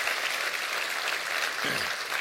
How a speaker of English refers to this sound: Clap your hands in this house right now.